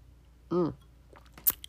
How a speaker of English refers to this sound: If you're not sure that I'm actually drinking this, here, listen. That is the glass. This is me taking a sip.